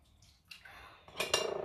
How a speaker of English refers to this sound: Okay, so I'm going to continue, but I feel like I'm gonna make too much noise because I'm washing the dishes. I'm super sorry.